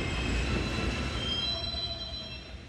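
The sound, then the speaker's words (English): An M subway train rumbles past on elevated tracks right next to a bedroom window in Bushwick, Brooklyn, New York, a steady loud roar with high metallic wheel squeals ringing over it, no voices. “My first apartment was a sublet in Bushwick, and my bedroom window was right next to the elevated subway tracks for the M train.”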